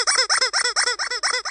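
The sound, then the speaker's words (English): A toy horn squeaks out a fast, steady run of about eight nasal, high-pitched honks, each rising then dipping, mimicking a goose's call. It is fairly loud, with no voices. “Obviously, this isn't a replica goose horn. It's the closest I could find.”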